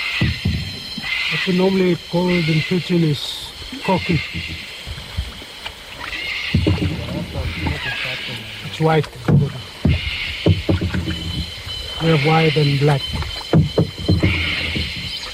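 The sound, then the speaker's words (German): Water sloshes and laps steadily around a raft drifting on a river, a soft continuous wash under voices that talk and call out at intervals throughout. “Jedem Ton folgend haben wir es uns auf dem Floß bequem gemacht.”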